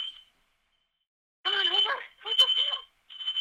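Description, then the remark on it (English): A shrill, high-pitched fire alarm sounds in repeated long beeps, with a person's voice speaking over parts of it; there is a silent gap between the first short beep and the rest. “Fire alarms are going off too.”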